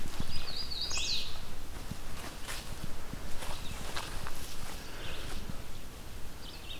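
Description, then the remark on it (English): A second hooded warbler, found on the way back from another hooded warbler territory, sings one clear, whistled phrase early on, with a faint hint of another at the end, over steady crunching footsteps on a trail outdoors. “Another hooded warbler on my way back from the other hooded warbler territory. I found a second one.”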